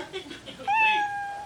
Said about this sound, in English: Comedians, you know that your 1 minute is up when you hear the sound of a kitty. That means wrap it up. Is that as loud as it gets?